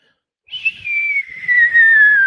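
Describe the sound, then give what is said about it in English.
A single eerie whistling tone starts abruptly and slides slowly downward in pitch, swelling steadily louder over about two seconds with a faint low rumble beneath it. “The eerie whistling sound got rapidly louder, overwhelmingly loud, drowning out all other earthly concerns.”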